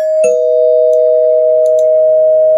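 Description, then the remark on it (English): A bell is struck once as a spoiler warning, with a sharp metallic onset, then rings on in a loud, steady, sustained tone that barely fades. No talking over it. “Well, mild spoiler alert. I'll ring the bell.”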